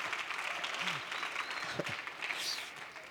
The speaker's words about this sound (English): Thank you for that pitiful little hand clap. It's worse than I thought, I could tell.